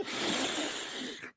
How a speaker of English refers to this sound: Breathing that sweet smell of victory after Woo! I got to breathe it in at Heinz Field last night.